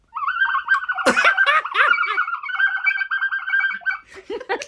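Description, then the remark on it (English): A person mimics birdsong to call the birds from outside the window, with a steady, warbling high whistle broken by sharp chirps and breathy squeaks, ending in a flurry of quick twittering notes. No words are spoken. “I want you to call the birds from outside your window.”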